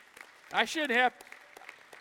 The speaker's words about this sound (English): I'd like to get a clap offering on that one.